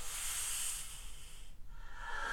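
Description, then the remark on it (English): Soft, steady hissing, like small creatures hissing. It breaks off briefly partway through, then resumes at a slightly different, higher pitch over a low rumble, with no voices. “Crawling sounds from the walls, from out of the darkness. No. Small hissing noises.”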